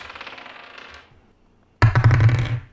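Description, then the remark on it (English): Dice clatter across a hard table in two bursts as several players roll: a softer rattle first, a short pause, then a louder tumbling roll. No voices are heard. “I'm rolling. I'm also going to roll. I will roll.”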